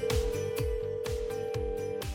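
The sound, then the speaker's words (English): A steady, continuous phone ringback tone drones on an outgoing call to a woman, while a thumping music beat pulses underneath roughly twice a second, fairly loud. “we're going to call her up”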